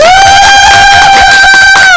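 A loud burst of crowd cheering and clapping to welcome a guest fills two seconds, dominated by a steady, high-pitched collective whoop that holds without a break. No one speaks over it.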